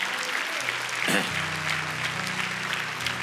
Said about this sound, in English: Can we give the Lord a hand clap for that? Isn't it?